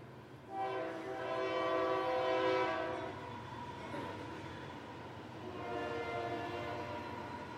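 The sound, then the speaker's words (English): A train horn sounds in two long, loud harmonic blasts separated by a brief pause, over a steady rumble of a passing train. “Especially since a train's coming.”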